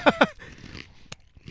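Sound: person imitating a horse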